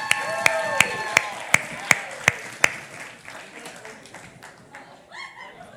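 Audience applause starts as a run of about eight loud, evenly spaced claps over a sustained cheer, then fades into softer, scattered crowd noise.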